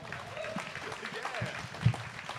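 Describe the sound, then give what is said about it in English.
An audience claps steadily throughout, a dense, even patter of many hands with a few louder individual claps and some crowd noise mixed in. “Yeah, give him a round time. Of applause, everybody.”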